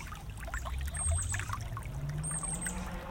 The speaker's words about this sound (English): We're listening to the creek here, the water. It's gently washing over the moss-filled rocks.